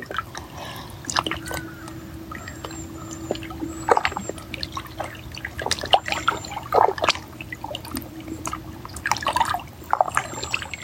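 trickling water

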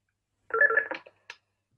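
telephone ringing

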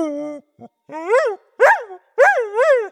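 dog barking and yapping

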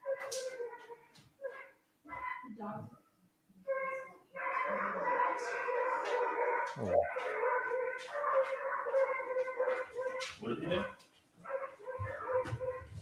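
dogs barking

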